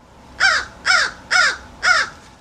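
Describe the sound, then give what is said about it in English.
An American crow caws four times in a steady, evenly spaced series, each call harsh and loud, heard alone against a quiet background. “This is what an American crow sounds like.”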